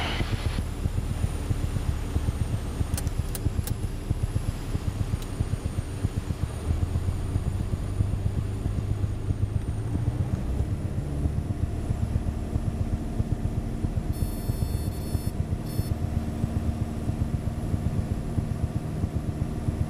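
Steady, loud drone of an airplane engine in flight, a continuous low rumble with wind noise and no pauses.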